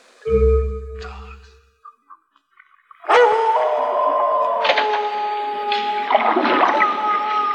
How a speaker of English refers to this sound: There. Hear it? That's the dogs. Island's supposed to be crawling with them.